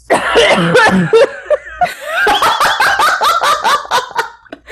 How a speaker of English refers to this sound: Was that a cough? Yes. Yes, that was a cough.